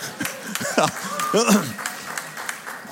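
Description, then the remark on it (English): An audience claps in a loose, uneven burst of sharp hand claps for about three seconds, applauding the mention of being mask-free, while a couple of voices call out briefly over it. “All right, Jesus got a clap and so did no mask.”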